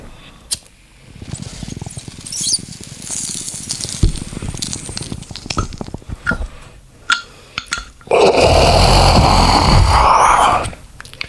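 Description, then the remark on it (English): Scattered clicks, taps and small rattles, then a loud, steady burst of water-pipe bubbling from a bong hit that gurgles for nearly three seconds before stopping abruptly. “Now that's a fucking bong hit.”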